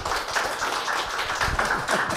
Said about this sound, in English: Big round of applause.